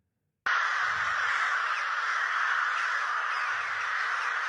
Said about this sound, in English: These are crows. And they're coming in across from everywhere. And this was in Japan.